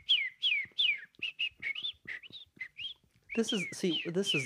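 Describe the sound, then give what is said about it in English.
A person imitates a bird call by whistling a quick, rhythmic string of about a dozen sliding chirps, clear, ending in a fuller, breathier warbling burst. “That's a really good bird sound.”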